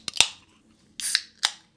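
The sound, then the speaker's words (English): Drink cans in koozies cracking open: a quick pair of sharp metallic clicks, then a short fizzy hiss and one more crisp snap, all fairly loud against quiet, with no talking. “Let's pop these motherfuckers open.”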